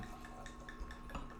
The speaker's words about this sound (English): Sorry. She's pouring wine here.